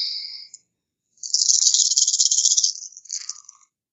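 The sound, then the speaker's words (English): Dice from a doubled dice pool rattle briefly, pause, then clatter in a steady, crisp shaking burst for about a second and a half before a few scattered clicks as they tumble to a stop. No one speaks. “Yay, for more dice!”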